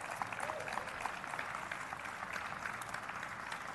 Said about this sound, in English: Let's give another hand of applause for Rose.